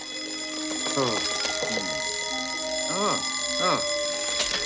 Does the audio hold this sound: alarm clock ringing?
yes